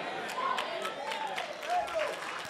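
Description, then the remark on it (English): An audience clapping in a steady, scattered patter of sharp hand claps, with raised voices calling out over and between the claps. “See, y'all clapping like you know that and can't nobody tell you no different.”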